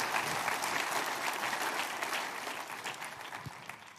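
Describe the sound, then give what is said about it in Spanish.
A church audience claps for the Lord in a dense, steady wash of applause, broad and even throughout before tapering slightly near the end, with no voices standing out. “¿Puedes dar ese aplauso grande al Señor?”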